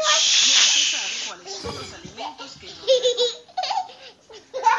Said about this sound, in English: Sorry, my kid is being loud right now.